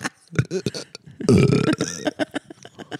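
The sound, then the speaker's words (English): A single loud, deep burp rumbles for about half a second, set among short, choppy vocal sounds before and after it. “Why is the cum giving you so much bad indigestion?”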